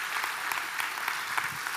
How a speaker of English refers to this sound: Over the past 3 years, we've seen 370 plus people give their life to Christ. That's cool. That's amazing. We should clap for that. That's awesome.